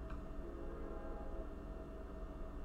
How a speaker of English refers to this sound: That was definitely the train. Thank God. The train just drove by.